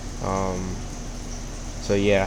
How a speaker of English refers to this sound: Before I get started and go into things, if you hear any background noises, that is because I am not in my original spot where I usually record my podcast. You might hear some water. Those are my fish tanks.